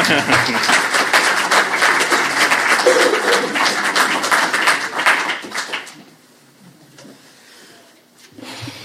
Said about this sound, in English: So give a big clap and warm welcome